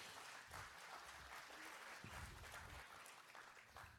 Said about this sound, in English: They clapped. Can you believe that?